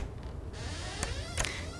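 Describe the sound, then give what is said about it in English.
A door at Baker Street creaks open with a slow, drawn-out, wavering groan of its hinges and a couple of brief knocks, heard alone at moderate volume. “The door is open.”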